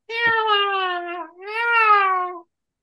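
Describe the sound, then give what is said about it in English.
A person imitates a cat's meow in a flat, bored, drawn-out, high-pitched voice: two long, monotone mewing notes in close succession, fairly loud, with no other sounds around them. “You have to make a cat sound that's high-pitched, and you have to be as bored as possible.”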